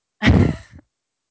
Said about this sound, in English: No, I'm struggling to breathe right now. Well, yeah, I can hear you. Sound like you're struggling breathing.